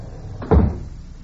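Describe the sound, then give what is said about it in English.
The front door of a log cabin trading post in an Alaskan village swings open at night with a single solid thump and a brief creaky rush, fairly loud, fading quickly into quiet with no one speaking. “Suddenly, the front door swings open. A man enters.”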